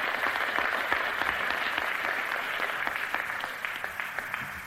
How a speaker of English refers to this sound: Give her a clap, brothers and sisters.